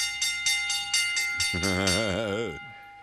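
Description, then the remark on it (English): A bell rings for the bell lap segment of the radio show In the Locker Room with Wolf and Starks, struck rapidly and steadily about four times a second with a lingering metallic tone, while a loud warbling vocal whoop joins briefly midway before the ringing fades out. “It's bell lap time.”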